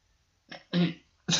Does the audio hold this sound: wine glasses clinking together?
no